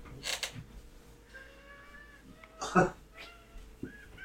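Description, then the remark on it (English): A cat lets out several drawn-out, high-pitched meows with wavering tones, broken by a short rough burst and a stretched, yawning vocalization, all fairly soft against a faint background. “Yeah, get a good yawn in there.”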